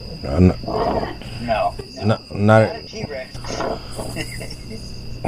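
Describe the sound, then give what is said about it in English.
A growling T-Rex roar sound effect rises and falls in several loud bursts, with a steady high chirping of insects running underneath throughout. “Have you ever had to remove like a T-Rex or...”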